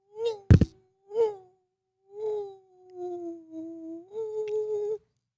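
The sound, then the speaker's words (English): A voice mimics a mosquito's whine, with a couple of short buzzy bursts and then a long, steady, nasal drone that rises slightly at the end, after a sharp thump near the start. “You just like get the pillow and you're like banging against the wall and the mosquito is going, jing.”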